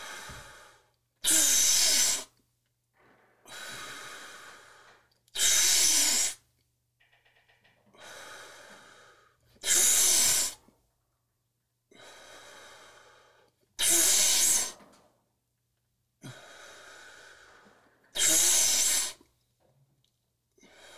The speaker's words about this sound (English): We're not in any way able to offer medical advice, but if you'd like to do the breathing exercise with us, you're welcome. So let's begin. Exhale.